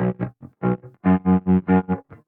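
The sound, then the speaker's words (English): Heavily distorted electric guitar (a 330) played with a cello bow: a string of sustained, buzzing notes in swelling pulses, loud with dense harmonics, several strokes in quick succession. “And then I was doing the cello bow on the 330 with like loads of distortion. That's what this is. Bowed guitar.”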